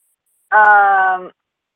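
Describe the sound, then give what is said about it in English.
One of the speaker's cats in the background gives a single drawn-out yowl, loud and steady, lasting under a second with a rich harmonic, moan-like tone before cutting off into silence. “They were asking what the noise was in my background, and that's my cats.”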